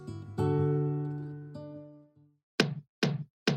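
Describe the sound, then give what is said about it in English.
A two-note chime rings out and fades, then three firm, evenly spaced knocks land on the front door of the Guardians' house, loud with short pauses between them. “Peter Quill yelled from the living room of the Guardians' house as he got up to answer whoever was at the front door.”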